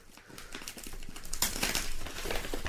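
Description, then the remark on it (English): Brown paper wrapping being pulled open from a big box, a continuous run of crisp crinkles and rustles that grows louder and busier halfway through. “Come on, mate, we're not saving the wrapping here.”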